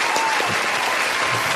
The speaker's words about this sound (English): Round of applause for our man hands.